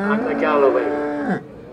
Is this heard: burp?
no